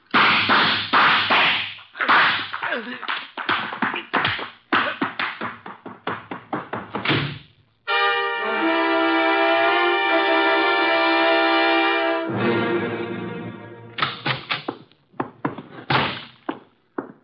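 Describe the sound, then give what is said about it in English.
A rapid series of sharp, loud bangs and thumps, like a door being slammed shut, broken by a sustained ringing tone in the middle before a few more knocks and bangs. “you know I dislike the banging of doors.”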